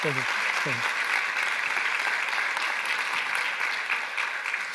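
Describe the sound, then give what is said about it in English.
A group claps steadily for a woman who has just shared her story, a dense wash of applause that stays loud and even for several seconds, with a brief voice heard at the very start. “Can we clap for”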